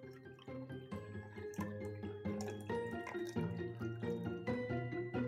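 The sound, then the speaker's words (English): A stirred cocktail is poured steadily from a mixing glass through a strainer into a glass, a continuous trickling and splashing that lasts several seconds, with a soft tonal backdrop and no talking. “The next thing we're going to do is take a strainer, put it on top of the mixing glass, and pour it into the glass.”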